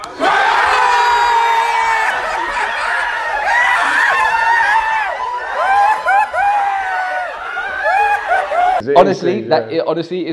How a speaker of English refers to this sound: Honestly, it's the funniest moment in like a group, just cheering for one of our boys. It was so good.